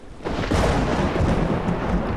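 A loud, rumbling thunder crash as lightning flashes across the sky, swelling in after a brief quieter start, a dense low roar with crackling texture that rolls on steadily without fading.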